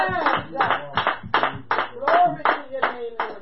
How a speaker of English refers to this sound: Clap your hands unto the Lord and make a joyful noise unto him.